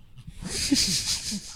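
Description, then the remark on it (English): A puppy sitting on top of a person pants and snuffles while getting a belly rub, a steady run of quick breathy huffs with a few soft nasal snorts and faint whiny tones mixed in. “Yeah, this podcast is better when there's a puppy sitting on top of you.”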